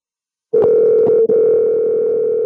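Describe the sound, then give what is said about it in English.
After a moment of silence, a telephone dial tone comes on loud as a phone call is placed, a steady continuous hum that holds to the end with only a tiny break partway through. “Let's give Sam a call.”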